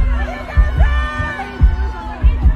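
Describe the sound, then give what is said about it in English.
A concert crowd keeps wooing, with long rising and falling voiced cries layered together over a steady pattern of dull low thumps, and no music playing underneath. “Oh, you're still wooing.”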